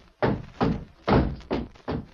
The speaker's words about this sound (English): Try again, Silver. Your horse can knock that door down. Here, Silver, come on, boy.